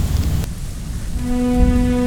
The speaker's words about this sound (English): Sarah walks out from her home and into the steady rain. She holds her umbrella tight and quickly makes her way down the sidewalk.